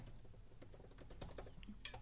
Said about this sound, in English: Way to fill the gaps with keyboard clicks.